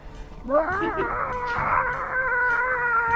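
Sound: imitated chicken clucking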